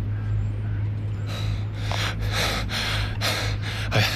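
A bent-over man pants heavily, drawing about six rapid, harsh breaths in a steady rhythm, over a low constant hum after a quiet opening second.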